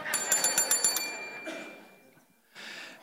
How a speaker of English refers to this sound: I'm putting it down now. But I still got my bell.